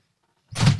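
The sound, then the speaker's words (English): After a moment of silence, a door opens or shuts with a quick rushing scrape and a low, heavy thud, fairly loud and with no voices. “Open the door.”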